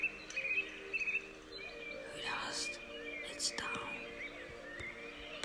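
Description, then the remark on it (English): A few soft bird chirps and thin calls come early on as the birds settle for the night at dusk, fading into a quiet evening hush while a breathy, whispery voice murmurs faintly underneath. “You hear the birds going to bed while it gets darker and darker outside.”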